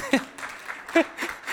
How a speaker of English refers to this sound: Round of applause